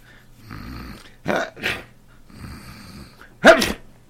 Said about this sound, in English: Gesundheit. Thanks.